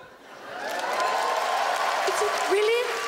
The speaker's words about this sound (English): Really, is it okay? Really? Like she's shocked that we're clapping, right?